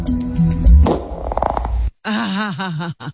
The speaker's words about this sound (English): I think what disgusts me is these farts are just strange, but here you go. They are. That was like this eruption.